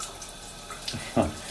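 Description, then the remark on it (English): Shower water runs in a steady, soft hiss throughout, with a brief louder splash or gush near the end. No one speaks. “It would be very cringe for me to call this Shower Thoughts, because I'm in the shower.”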